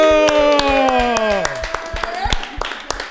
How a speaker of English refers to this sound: Clap it up. Yeah.